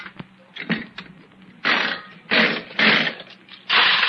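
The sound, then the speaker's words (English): A nickel slot machine's mechanism clicks and whirs, then loud bursts of clattering nickels pour out in four rushes, each lasting about half a second, paying out a 20-nickel win, with no talking. “So far, we've put in over $10 worth of nickels in various machines and only got $2 back.”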